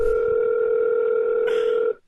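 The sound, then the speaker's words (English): A telephone ringing tone on the line: one steady, loud electronic tone held for about two seconds, then cut off abruptly, with no one speaking. “All right, it's ringing.”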